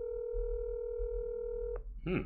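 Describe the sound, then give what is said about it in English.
A steady telephone tone drones continuously for nearly two seconds as a call is placed to a New York Newsday writer, then cuts off abruptly, followed by a brief burst of a voice; the call was forwarded to an automatic voice message system. “Hopefully he gets to his phone and we'll be able to talk to him about this game.”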